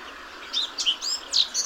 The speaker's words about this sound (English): The blackcap starts its song muttering and scratching, and then halfway through it shifts to shrill, jaunty whistles.